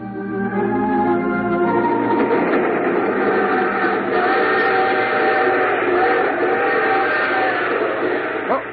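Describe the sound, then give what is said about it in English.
A train car rolls along with a steady, loud rumble and a droning mechanical hum, constant throughout with a faint rattle, no pauses or distinct jolts standing out. “I was just going to get me a drink of water and a train lurch.”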